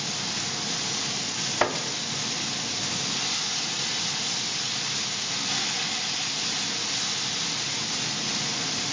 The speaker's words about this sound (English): Now there's a little bit of grease content, fat content in here. So I had to turn on the exhaust fan. That's the humming you hear. Because we don't want to stink up the whole house.